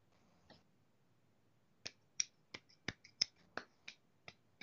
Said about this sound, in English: So, do you know the sound of one hand clapping?